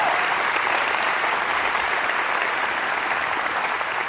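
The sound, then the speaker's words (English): A crowd applauds all the dads and fathers present, a dense, even wash of many hands clapping at a constant loud level for several seconds, with no voices standing out. “So one more time, let's give all of our dads, all of our fathers, a round of applause.”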